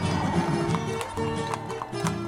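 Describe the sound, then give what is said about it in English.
Horses' hooves clip-clop on the main streets of the city during the Bonito horseback ride, several animals at once in a steady, overlapping rhythm, with a busy crowd-like murmur of tourists and residents and some tonal background sound underneath. “While the horses go through the main streets of the city, tourists and residents fill the sidewalks and balconies to contemplate the moment”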